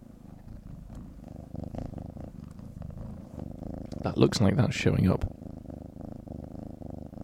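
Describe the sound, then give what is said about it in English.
A cat purrs on a person's lap close to the microphone in a steady, low, very loud rumble throughout, swelling louder for a moment near the end, while a person speaks briefly over it. “When she gets going, it is a proper big purr, which is nice.”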